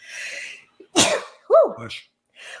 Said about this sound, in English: I never sneezed just once. Okay, I'm good. So that was a big one.